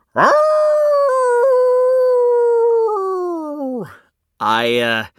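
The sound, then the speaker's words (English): A voice howls like a wolf in one long, loud, steady note that sags and trails off near the end, followed after a brief pause by a shorter, wavering howl. “I just want to howl at the moon.”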